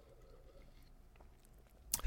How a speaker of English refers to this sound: Hold, let me sip some water. Hold on.